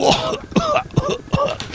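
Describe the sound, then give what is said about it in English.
A person coughs and clears their throat in a quick series of three or four harsh, rasping bursts, with brief gasping pauses between them. “I waste my monologue time on coughing.”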